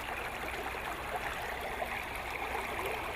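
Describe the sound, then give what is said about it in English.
A river in Karis Park, Missoula, flows steadily on a sunny day with a continuous rushing, burbling wash of water, even in loudness throughout, with no voices present. “nasty stuff, a pole in the ground and some stuff in the river.”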